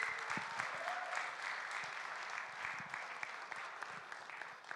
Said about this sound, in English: So I'm going to invite Phil up. Can we give Phil a round of applause?